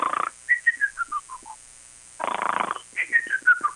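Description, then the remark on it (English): Two cartoonish snores, each a rough, raspy inhale followed by a series of short, falling whistle-like tones on the exhale. They are fairly loud, with no talking. “She hears it. Do you smell... Did you fart? That's her snore. I know it anywhere.”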